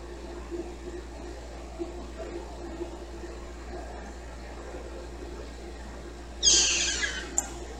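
A female pet cat lets out one short, breathy cry near the end, rising briefly above a steady low hum and faint background noise, with no talking.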